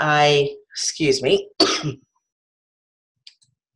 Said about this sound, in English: Okay, so brief intermission there because I had to catch my breath with this cough.